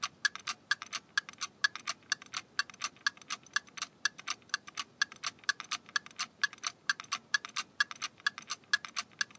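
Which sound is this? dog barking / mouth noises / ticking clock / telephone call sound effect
ticking clock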